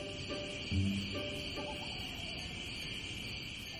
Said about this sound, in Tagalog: Matitinis na bungisingis naman ng mga kuliglig ang nagpapaantok sa kanila tuwing gabi.